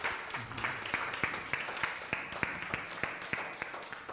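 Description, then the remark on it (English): A crowd claps and applauds together as a clap offering to the Lord, a dense wash of clapping with sharper claps landing in a steady, quick rhythm, moderately loud, with faint voices briefly underneath. “Someone give the Lord a clap offering.”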